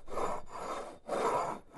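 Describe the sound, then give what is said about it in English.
A mug scraped back and forth across a desk as a sound simulation, in four rough, gritty strokes with brief pauses between them. The grinding is steady and fairly loud, and no one speaks. “Yeah, let me just give you the simulation. Here's the mug on my desk.”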